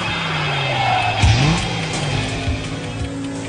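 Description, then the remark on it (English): A car engine revs steadily, its pitch dipping sharply and then climbing again as it shifts, with a broad roar continuing throughout and no voices. “Ladies, start your engines.”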